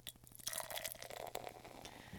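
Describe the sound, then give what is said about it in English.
A pale Pilsner beer pours steadily from a 16-ounce can, with a rapid glugging rhythm underneath and a bright fizzing hiss as the white foam head rises. No one speaks. “And the pour.”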